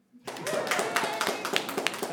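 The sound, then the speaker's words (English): An audience breaks into applause, a dense wash of many hands clapping together with crowd voices mixed in, starting abruptly and holding steady for about two seconds; the audience claps to show they have seen the movie Thumbelina. “Give a round of applause if you've ever seen the movie Thumbelina.”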